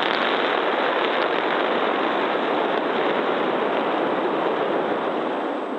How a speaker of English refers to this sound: Last week, the company fired 31 of the rocket's 33 engines while the vehicle was bolted down to the ground, a first for SpaceX and a crucial test of the rocket and its launch pad.